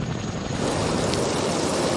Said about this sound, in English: The National Guard still making those air rescues. One, in fact, is returning right now. They've been doing so for more than 12 hours.